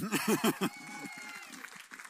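A small group claps briefly for a woman who has been helping, mixed with a few voices in the first moment; the clapping then thins out into light, scattered claps that fade quickly.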